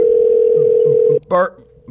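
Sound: telephone dial tone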